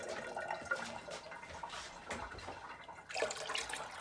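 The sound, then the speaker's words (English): Water pours steadily from a can into a pot, the fourth can being poured, a continuous splashing stream that swells slightly near the end, with no voices. “I've poured three cans. One more.”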